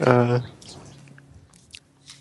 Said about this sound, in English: Okay. I just muted so I could chew on some peanuts.